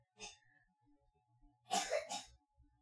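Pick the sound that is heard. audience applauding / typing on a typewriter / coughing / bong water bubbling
coughing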